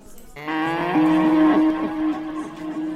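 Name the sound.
cow mooing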